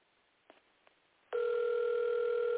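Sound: telephone call dial tone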